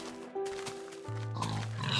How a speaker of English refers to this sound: Get that pig.